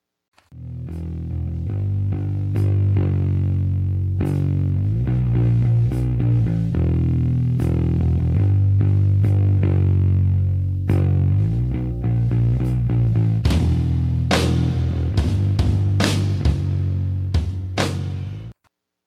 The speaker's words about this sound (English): Theme music?